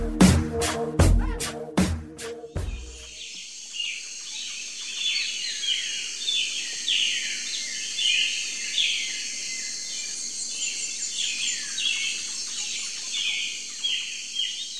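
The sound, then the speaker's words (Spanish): Birds sing and chirp steadily in a dense, lively chorus in the Maya jungle of southeastern Mexico, with a constant high insect-like hiss underneath, following a few sharp rhythmic thumps at the very start. “En el sureste de México, en el corazón de la selva maya, entre cantos de aves y el sonido de árboles acariciados por el viento”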